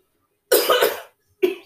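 A close, loud run of three quick, harsh coughs, then a brief pause and a single final cough, with no talking around them.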